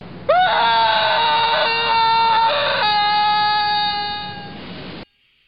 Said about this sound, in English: I mean, that's fear. That's a fear-based scream. I think doesn't it sound like he's falling off a cliff, right? Wouldn't that be yeah, right? Yeah, like he's falling off something.